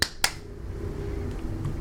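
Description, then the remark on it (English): Two sharp hand claps, made to sync a recording, land in quick succession, crisp, followed by a steady low hum with no talking. “I didn't hear your clap, but that's okay.”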